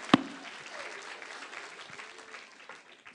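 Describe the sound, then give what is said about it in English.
A short burst of light, scattered clapping from a small group, opening with one sharp clap and continuing as a soft, dense patter for a few seconds. “A little applause.”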